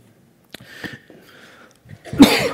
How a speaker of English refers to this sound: Immediately coughs into the microphone.